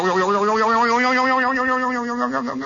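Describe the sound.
A voice imitates the hood of a police squad car flying up after a crash, with one long, loud, sustained vocal sound, a wobbly, twangy tone that holds steady before trailing off, like a cartoonish boing.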